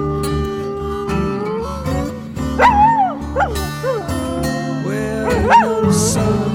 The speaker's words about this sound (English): dogs outside.